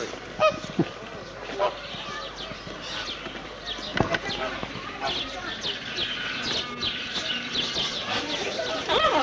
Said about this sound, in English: Flamingos.